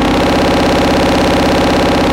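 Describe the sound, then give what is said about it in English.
A loud, sustained distorted bass synth growls steadily through a Tube Screamer overdrive pedal, its gritty low tone buzzing with a fast, rough pulsing texture and no voices over it. “Some nice distorted growling bass sound.”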